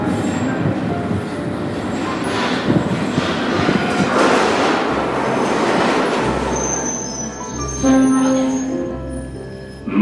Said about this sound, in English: Here comes the train.